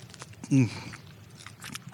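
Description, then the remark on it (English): A single sharp crunch as teeth bite into a crisp cracker-thin pizza crust covered in flour and full of cheese, recorded in stereo with two microphones, with a brief vocal sound around it, then quieter crackly chewing noises trailing off. “We did a double mic on that crunch grab.”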